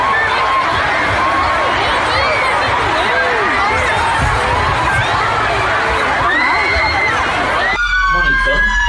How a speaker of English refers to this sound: Yeah, just people running for the exits. Ambulances showing up to the arena.